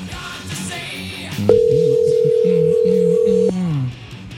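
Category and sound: signal or alarm, telephone dial tone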